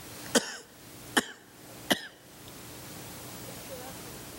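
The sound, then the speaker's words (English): A voice imitates the harsh, hacking tubercular coughs of rickshaw operators: three sharp coughs spaced under a second apart, each with a short rasping tail, followed by a couple of seconds of quiet background. “He said the second night he slept a little bit better than the first night, but he still was awakened by their coughs, their tubercular coughs.”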